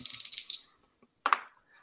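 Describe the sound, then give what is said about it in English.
Dice rolled for a grace roll in a tabletop game rattle in a quick series of bright clicks for about half a second, then after a short pause clatter onto a hard surface in a brief tumbling burst, landing on snake eyes. No one speaks. “Fuck me, I rolled snake eyes.”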